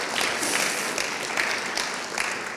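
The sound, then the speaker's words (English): A crowd applauds steadily as a cheer for God, with dense, crackling claps and scattered cheers, the sound staying loud and even throughout with no talking on top. “Should we just give God a cheer?”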